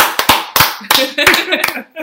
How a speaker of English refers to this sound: I think he deserves an applause even for that. Come on.